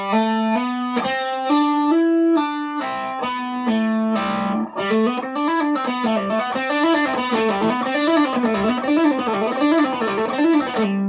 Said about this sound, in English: So we're going to start by plucking the first in each line. We're going to pluck the 5th fret on the D, the 5th fret on the G, and then the 9th fret on the D coming back.